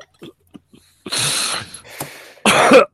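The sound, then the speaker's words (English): A person coughs, three harsh, loud bursts in quick succession after a few faint clicks and breaths, with no talking. “Yeah, I don't have a cough button.”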